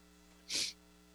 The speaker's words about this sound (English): Allergies are kicking in, too. Yep. Have you been sneezing a lot? I have. I've been sneezing a lot.